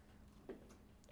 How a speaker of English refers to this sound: The cough hurts me.